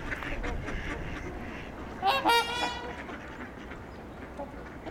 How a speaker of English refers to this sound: There's a lot of familiar quacking sounds.